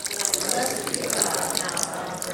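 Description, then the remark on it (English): Water is poured steadily into a baptismal font during a baptism service, a continuous splashing and trickling that holds at an even level for a couple of seconds. “Wash away the sin of all those who have been cleansed by this water and bring forth as an inheritance of your glorious kingdom.”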